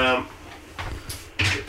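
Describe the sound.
A chair being handed across over cords and cables, with a few sharp knocks and scraping bumps, the loudest near the end, after a brief burst of a voice at the start.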